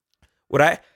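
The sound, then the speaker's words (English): A single short, sharp sneeze bursts out, with a quick voiced, breathy explosion that fades within a fraction of a second and silence around it. “Bless you. Thank you.”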